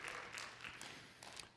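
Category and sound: crowd, a few people clapping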